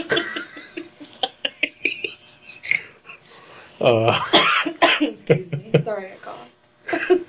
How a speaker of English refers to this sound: Excuse me. Sorry, I coughed.